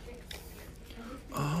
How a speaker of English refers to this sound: Yeah, you're pulling out a tiny little box, paper box, kind of. For the mason bees.